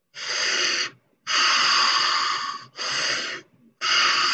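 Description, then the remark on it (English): Four loud, forceful breaths in quick succession, each a harsh rushing burst of air with short pauses between, with no talking, as a person demonstrates a breathing exercise. “it kind of first of all starts with learning how to breathe, right? And the breathing, I'm going to describe it now, but it's going to seem really weird to go something like this.”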